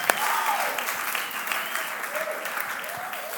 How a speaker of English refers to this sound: So I think that you should give yourselves a great big round of applause because we think you're awesome.